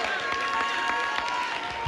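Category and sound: crowd, audience clapping and applauding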